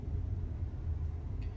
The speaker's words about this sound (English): So I'm in traffic, by the way. That's why my hands are off my head at the moment. Now I'm moving.